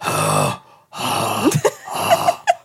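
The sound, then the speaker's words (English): A person imitates the call of a rutting deer during mating season with loud, raspy, throaty groans: one short burst, a brief pause, then a longer rough stretch broken by sharp grunting catches. “It was just this deer. Like, I think being like a fucking weirdo mating season.”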